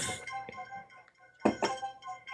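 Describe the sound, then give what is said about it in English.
A phone notification chime plays: a few bright, ringing tonal notes, fading, then a louder burst of chimes partway through that rings out to the end. “Sorry. I'll put my phone on silent.”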